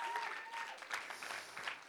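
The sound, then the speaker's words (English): A crowd claps steadily to thank helpers, many hands making a dense, continuous patter at a moderate level without any voices standing out. “Can we give a round of applause thanking them for all that they do?”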